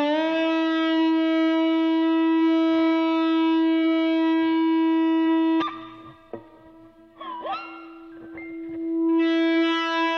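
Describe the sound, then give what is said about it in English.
An electric guitar run through effects holds a long, steady, siren-like tone, then breaks into wavering, swooping pitch bends that mimic a whale call before settling into a sustained note again. “That's the whale sound.”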